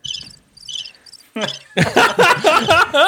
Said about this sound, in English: For the crickets. Hang on.